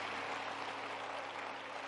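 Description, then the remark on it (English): A church audience claps their hands for the choir in a steady, dense wash of applause that holds at an even level throughout, with no voices standing out above it. “Let's give the Lord a hand clap for our choir.”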